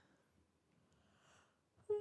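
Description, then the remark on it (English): A long, breathy yawn, quiet and airy at first, then swelling into a loud, voiced groan at the end, with no talking over it. “Why are you yawning?”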